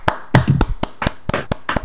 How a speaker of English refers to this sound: Quick round of applause, please,